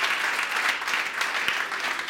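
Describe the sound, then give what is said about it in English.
A crowd claps steadily in a dense, continuous wash of applause, with many overlapping hand claps blending into a bright, sustained patter and no voices standing out. “Just give them a round of applause as they go.”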